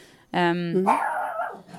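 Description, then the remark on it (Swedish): A dog, Goldie Blanken, gives one loud bark that starts as a high, whiny yelp and breaks into a rough, drawn-out woof, then trails off. “Nu, alltså, nu är det min Goldie Blanken som låter.”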